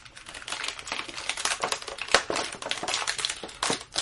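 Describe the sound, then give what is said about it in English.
Crunchy plastic packaging being handled as the plastic is pulled out, a steady stream of sharp, dense crinkles and crackles with a few louder snaps, continuing for several seconds with no talking. “Crunchy sounds for the podcast.”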